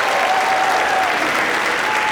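Steady, dense applause from a comedy club audience at the Dayton Funny Bone, clapping for themselves at the end of the show. Many hands clap at once in a loud, continuous wash of noise with no breaks, followed by a faint whistle-like tone drifting through it.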